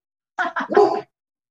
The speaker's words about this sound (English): Crazy dog. That might be just be my everyday Amazon delivery. One sec.